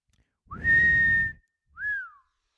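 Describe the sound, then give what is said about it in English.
Two clear whistles: a long steady note with some breathy air beneath it, then a short pause and a brief note that rises and falls. No one speaks. “And don't everyone whistle at once.”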